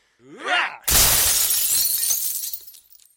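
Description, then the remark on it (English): A brief shout gives way to a sudden loud crash of window glass shattering as people jump out through the window, with a burst of breaking shards that rings and scatters for about two seconds before fading out. “Did they just jump out the window?”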